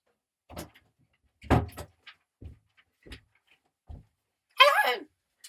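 A door being opened by someone playing the Easter Bunny: several sharp clunks and rattles of the latch and handle, spaced unevenly, then a brief high-pitched creak as it swings, clear.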